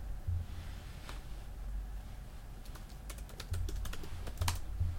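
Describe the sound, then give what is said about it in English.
Rapid clicking of computer keys, a burst of typing with irregular taps clustering toward the end, fairly quiet over a low steady hum. “Are you typing away?”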